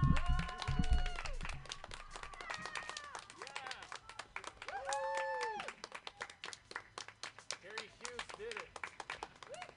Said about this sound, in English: You guys, okay. Everybody clap or something so it doesn't sound weird when I run.